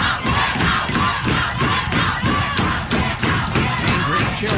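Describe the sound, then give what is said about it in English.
A large crowd of protesters shouts and chants loudly and continuously, voices rising in rhythmic bursts roughly every half second, drowning out any single speaker in a sustained roar of protest as they shout down a constitutional scholar. “This is one of the great constitutional scholars of our time they're shouting down, by the way.”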